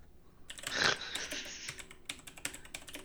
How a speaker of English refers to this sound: I'd Google it too, but my keyboard is very loud.